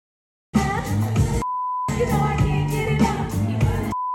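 At a wedding, filmed on a cell phone, a crowd of voices sings together loudly in two bursts, broken by a short pause where a steady high electronic tone hums; the tone returns briefly at the end.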